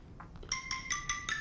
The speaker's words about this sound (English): I got my phone ringing here.